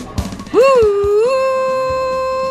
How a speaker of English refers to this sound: Oh, Arts Express is blowing its whistle at the 3CR station.